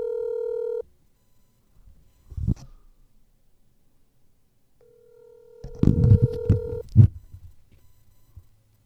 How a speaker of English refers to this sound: Pick up that phone.